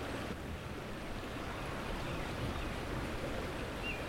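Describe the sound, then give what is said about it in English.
Steady rushing of a river flowing through woods in Stanley Park, a dense, even wash of sound at constant loudness, with no voices over it. “Yeah, I didn't know this was all here. All the woods and the river.”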